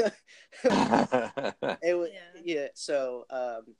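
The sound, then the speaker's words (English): A person imitates the growl of Chewie, the Star Wars Wookiee: a string of throaty, warbling roars that rise and fall in pitch, with a harsh breathy start and a higher yelp near the end. “Like that weird vacuum noise he makes.”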